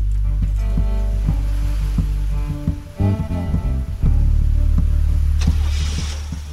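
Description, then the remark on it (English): A car engine roars and revs, its deep drone steady beneath a hissing wash of rain on the road, with a sharper noisy burst of tires screeching near the end as the getaway car drives away in the rain. “The group managed to drive away, their tires screeching in the rain.”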